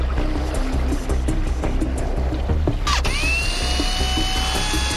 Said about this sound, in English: I'm using a magnet on a drill here that my buddy invented. Certain rocks like pyrite contain iron with strong magnetic properties. Using a spinning magnet will speedily draw these fragments away from non-magnetic gold.